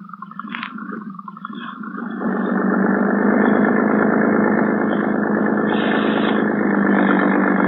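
A harbor police motorboat's engine hums at a low level by Manila bay on a dark night, then swells at about two seconds into a loud, steady, throaty roar that carries on unbroken to the end. No one speaks.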